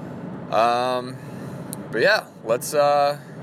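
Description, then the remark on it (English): A steady low road-and-engine rumble fills a car cabin while driving south from Boston to Providence, Rhode Island, in heavy traffic going by Gillette Stadium, with a person's voice sounding in short bursts over the constant hum. “Currently on the way down to Providence, Rhode Island, coming from Boston, so driving south. Some heavy traffic going by Gillette Stadium.”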